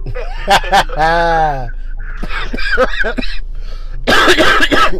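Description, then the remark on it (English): A man laughs and coughs at once, with sharp, raspy cough bursts mixed into a strained, wheezy laugh. The fits come in several close bouts, loud, with a harsh hacking cluster at the end. “Man, you know I cough when I laugh, man.”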